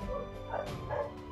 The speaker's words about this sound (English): Rupert, stop barking